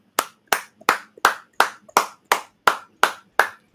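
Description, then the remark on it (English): One person stands up and claps their hands in appreciation of a movie, in a steady, even rhythm, about eleven sharp, crisp claps at roughly three per second, loud and alone with no voices. “I just wanted to stand up and clap for them because it was fucking good.”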